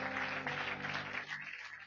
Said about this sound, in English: Somebody give the Lord one more good hand clap.